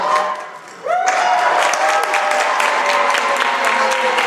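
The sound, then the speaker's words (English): After a brief lull, State House and Senate legislators erupt into loud, sustained applause and cheering as the 2022 regular session is adjourned sine die on March 10, covered by TVW; dense clapping with whoops and a rising shout that carries on steadily to the end. “Well, a lot of cheering there, and if you're wondering, folks, the traditional Latin pronunciation would be sine die, without a day, signaling the end of the session, but we'll let them say it however they want to.”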